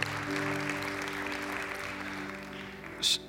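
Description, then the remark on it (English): An audience gives God a hand clap of praise, a steady wash of many hands clapping over a low sustained organ-like tone, with a brief brighter burst near the end. “We give him a hand clap of praise.”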